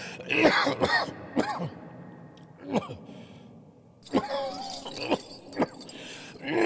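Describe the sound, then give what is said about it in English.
A harsh fit of coughing in a cavern with nitrate-covered walls: about eight rough hacks and throat-clearing bursts come in uneven clusters, with a short pause in the middle before the coughing starts up again. “How long have you had that cough?”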